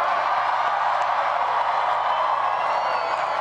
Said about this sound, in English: A lot of clapping.